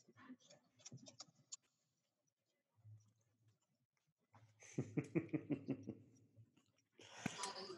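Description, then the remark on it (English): A pet walks across a computer keyboard, keys clacking in irregular, uneven bursts: a short cluster of clicks, a quiet pause, then a louder, denser run of key presses. “So yeah, no, it's there's a lot of don't walk on the keyboard. I don't know what will happen. Don't walk.”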